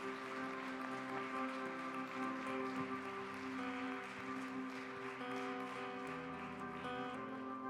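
A church audience claps steadily for the whole stretch, a dense, even patter of many hands applauding a pastor's message after a closing prayer, while sustained keyboard chords hold underneath. No one speaks.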